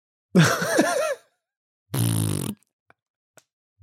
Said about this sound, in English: I was thinking of something like... What about like... just a fart?